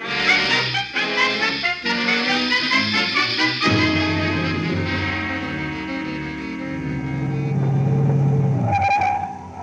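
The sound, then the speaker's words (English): A car engine revs hard and accelerates, its droning pitch rising and falling as it speeds along trying to overtake a train, loud with no voices. “Look, get your car. We'll try and overtake the train at the first stop.”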